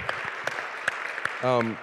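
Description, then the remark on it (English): An audience claps for the worship, with sharp scattered claps standing out over a steady wash of crowd noise, then a voice lets out a short, high cheer near the end. “We can clap for worship.”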